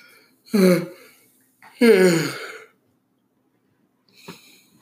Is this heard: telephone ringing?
no